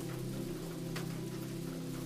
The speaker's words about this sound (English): You surrender to the simple serenity of the moment, preparing to sail on a sleepy journey woven with the threads of dreams, guided by the somnolent rain.